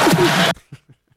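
Four slaps in quick succession: a loud, sharp first smack with a sustained rush of noise behind it, then three quicker, fainter slaps that trail off in volume.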